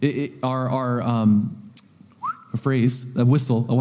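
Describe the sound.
A person talks, breaks off for one short whistled note that slides upward and holds briefly, then resumes speaking. The whistle is quick, clear and fairly quiet.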